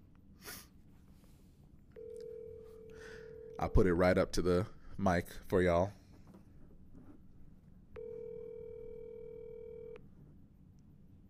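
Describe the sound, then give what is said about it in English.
A phone ringback tone sounds twice as a man calls someone to get their opinion, each a steady two-second electronic buzz, fairly loud, with the man talking briefly in the gap between the rings. “What I'm going to do is I'm going to phone a few people and see if we can get them to give us their opinions as well.”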